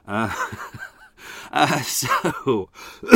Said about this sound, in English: yep, coughing. Shouldn't really have marble cake.